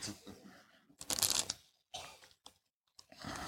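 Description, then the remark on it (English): A deck of playing cards being shuffled during a card trick, with a few quick bursts of riffling and snapping separated by brief pauses, ending in a longer rustling shuffle. “This is so important because what we're going to do, and I'm going to cut the deck, and what we're going to do here, I'm going to shuffle it one more time, okay?”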